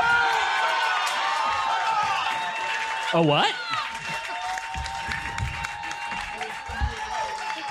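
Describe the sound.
An audience cheers and applauds in a dense, steady wash of clapping and shouting, with whoops and a brief rising-falling vocal swoop near the middle, and a voice briefly speaking over it.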